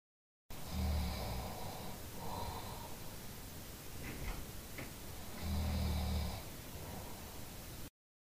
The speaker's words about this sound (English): I can hear you snoring, unfortunately.